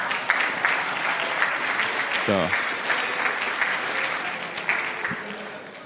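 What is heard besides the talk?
audience clapping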